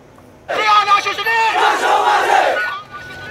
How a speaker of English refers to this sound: Tens of thousands of people are pouring into the streets of Myanmar, also known as Burma, to protest a military coup that resulted in the arrest of elected leader Aung San Suu Kyi.